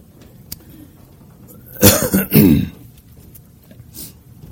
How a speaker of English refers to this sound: That cough is just allergies. It's okay. It's just all right. Just cleared my throat.